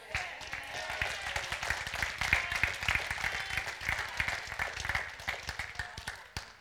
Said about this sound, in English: I'm going to say it again for those of you that didn't clap.